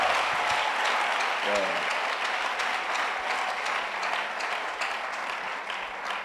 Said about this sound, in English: Clap your hands for her. Acclamez. Well, yeah. She sings very well. Oh. Elle chante très bien. Is it all nice? Very nice. Elle chante très très bien. Yeah. Clap your hands. Acclame.